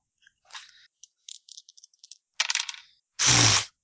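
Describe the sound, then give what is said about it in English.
Dice rattle and click across a hard tabletop in a quick series of small clacks, ending with one louder, fuller clatter. No voices. “That's a 4. Or 3. Snake eyes.”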